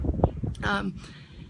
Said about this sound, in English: Apologies, it's windy.